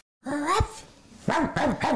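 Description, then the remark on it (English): A person's voice imitates a dog barking: one drawn-out woof, a brief pause, then three quick woofs in a row, fairly loud, with no other sounds around them. “Woof, woof, woof. We're back. That's dog for we're back.”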